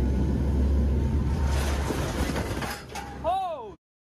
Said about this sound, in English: For example, when it came to Hurricane Ian, to kind of understand this kind of monster, we saw hurricane hunters actually flying a plane straight into Ian yesterday, capturing it on camera.